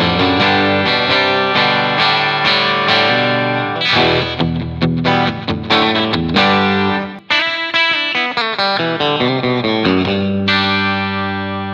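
A loud electric guitar rings out through an amp with a bright, clangy, chiming tone, strummed chords and picked notes in a steady flow for about twelve seconds, with no one talking.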